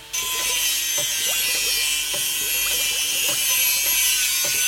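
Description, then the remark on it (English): An angle grinder cuts three very deep slots into the top of a piece of wood with a loud, steady high-pitched whine, broken by rough, rhythmic clattering bursts as the blade bites, running continuously throughout with no talking. “Next, I shall get my angle grinder and make three very deep slots in the top of the wood.”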